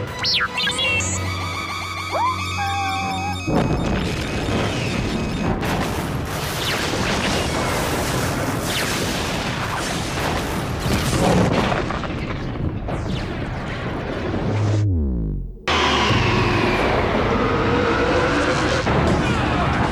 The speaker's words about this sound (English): He triggers the explosion. And what a massive, glorious explosion it is. A really just wonderful piece of animation there as that Jedi Cruiser explodes and has like shockwaves